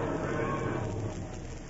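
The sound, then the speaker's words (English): Cattle low and moo at stock pens in a dense, steady din, with a rough, sustained lowing that fills the whole moment without pause. “We better get our dough for these cows before we spring the other deal on them.”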